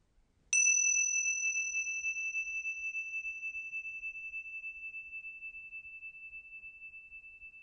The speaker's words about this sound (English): Just waiting calmly as you notice the sound of the bell moving through time.